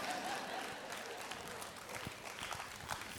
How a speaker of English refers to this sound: Yes, two people clapped.